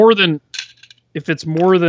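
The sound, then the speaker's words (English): Dice, including D20s from a D&D dice kit, clatter and tick across a tabletop in a quick burst of bright clicks, with voiced sounds before and after. “I have dice here. We can roll dice. I got D20s. I got my D&D kit of dice here.”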